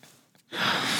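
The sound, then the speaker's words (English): A person yawns: a soft, quiet inhale, then a loud, breathy, drawn-out exhale that holds steady to the end, with no talking. “That's why I'm yawning.”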